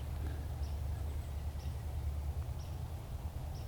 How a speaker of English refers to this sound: I want to know what that bird is.